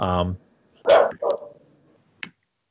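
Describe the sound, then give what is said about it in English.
A dog barks a few times, sharp loud yaps spaced out over a couple of seconds with brief quiet gaps between them, no other sounds around. “As the dog starts barking and interrupts me.”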